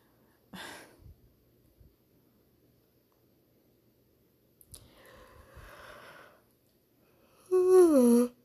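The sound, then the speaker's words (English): A yawn: a short breathy inhale, a long airy stretch of breath, then a loud voiced groan that slides downward in pitch before cutting off. No one speaks. “I keep yawning, I'm sorry.”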